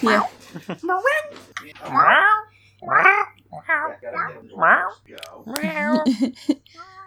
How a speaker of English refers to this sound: Just 5 minutes of cat noises.